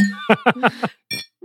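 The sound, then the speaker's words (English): A short burst of rhythmic, laugh-like vocal sounds, then a single bright glass clink rings out clearly in a toast to a new patron, followed by a brief low hum. “Anyway, we're going to do a toast to our new patron, Seth.”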